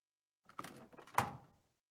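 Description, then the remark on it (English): A door handle rattles with a short metallic click, then a door latch releases and the door swings open with a louder clunk, with no talking. “Door's locked too.”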